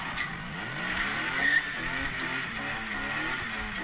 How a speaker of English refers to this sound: this is for the listeners, they don't think my car's underpowered like you made it out to be. How I feather the throttle.